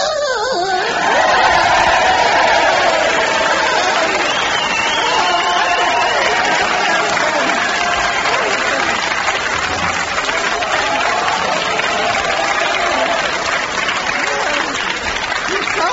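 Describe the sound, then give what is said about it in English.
A large boxing arena crowd roars and applauds continuously as the mysterious champion PXO21115 OBE takes off its dressing gown, dense clapping and cheering at steady loudness for the whole stretch, with excited shouts rising through the din. “And now, the champion, the mysterious PXO21115 OBE, is taking off its dressing gown and the crowd can't believe their eyes.”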